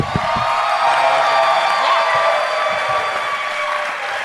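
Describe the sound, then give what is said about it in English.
An audience claps steadily in a dense, sustained wash of applause, with scattered cheers and whoops rising above it throughout, as comedian Todd Barry is introduced. “I've just been listening to the way they applaud for East guests, and it just seems like I'm the crowd”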